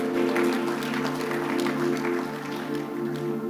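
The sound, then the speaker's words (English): A church audience claps their hands in a dense, steady wash of clapping that runs throughout, over a sustained low humming tone, with no voices standing out. “I thought you are clapping your hands to God's glory.”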